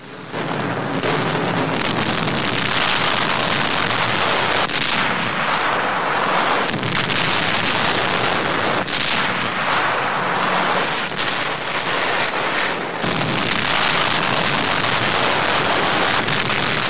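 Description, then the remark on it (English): A dense, continuous roar of explosions and rapid gunfire from American and British bombing raids on Germany, including an American daylight mission over Berlin against armament industries. It rumbles without pause, loud bursts repeatedly breaking through a wall of noise. No one speaks. “In their first daylight mission over the heart of Hitler's fortress, American bombers combined with British air forces are pounding Germany with raids around the clock.”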